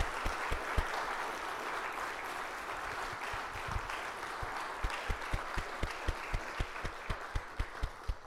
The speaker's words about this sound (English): I think a round of applause for these wonderful people is in order.